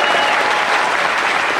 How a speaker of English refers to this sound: Give them a big round of applause, please.